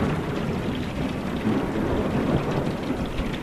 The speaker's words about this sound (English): Late on that Monday evening, a severe thunderstorm crashed down on the community, thrashing it with extreme straight-line winds.